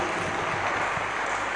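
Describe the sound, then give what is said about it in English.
A crowd claps steadily, a dense, even patter of many hands that holds at a moderate level without clear breaks. No one speaks over it. “Are you clapping or?”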